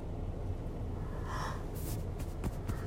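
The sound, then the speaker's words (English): A drawn-out, breathy yawn, with a long airy exhale and a few soft puffs of breath afterward over a low background hum. “Ooh, this yawning. I can't help it.”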